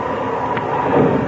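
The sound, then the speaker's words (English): An airplane that has just landed taxiing on the ground over the side of a field: a steady, dense engine roar with a low rumble underneath, swelling slightly toward the end, with no voices. “He must be taxiing over the side of the field.”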